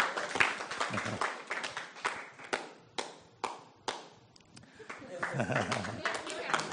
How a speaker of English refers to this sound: Give her a round of applause as she comes up.